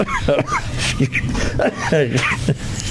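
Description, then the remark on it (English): Several rough, voiced coughs and throat-clearing grunts come in quick, uneven bursts, fairly loud, with short gaps between them and no clear speech. “Can't speak without coughing.”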